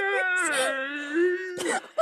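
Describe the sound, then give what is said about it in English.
Someone vocally imitates the hoarse cries of Donovich echoing across the night: a long, drawn-out wailing moan that holds steady, then breaks into a raspy, breathy burst and ends with a short rising yelp. “As you are leaving the church behind, you can hear Donovich's hoarse cries echoing across the night.”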